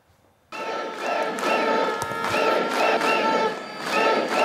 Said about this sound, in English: And staying overseas now, massive crowds stretching a mile long, taking to the streets in Warsaw, Poland this weekend.